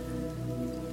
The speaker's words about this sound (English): you still see excess water running down the walls and still dripping off some of the tables and the chairs. The floor is still soaked, and you are soaked.